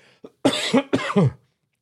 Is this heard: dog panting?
no